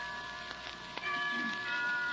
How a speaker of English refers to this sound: Why don't we both just sit here and listen to the chimes for a while?